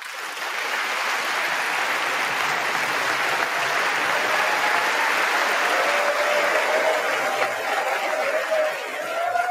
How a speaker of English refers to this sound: Wow, that's a lot of clap. That was, and that's I don't know what the building that's in. That's in the same places they hold the State of the Unions and everything else.